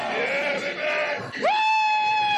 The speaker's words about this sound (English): So this right here is probably my favorite. This is Ronnie Coleman. And anyway, yeah, buddy! It's a compilation of screaming. I'm just gonna let this roll for about 10 seconds.